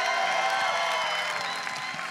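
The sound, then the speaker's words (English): An audience claps steadily, a dense wash of applause with scattered voices calling out amen beneath it, holding at a fairly even level for the whole two seconds. “and y'all say amen, or you clap your hands.”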